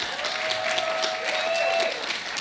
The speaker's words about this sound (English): Yes, give a big round of applause.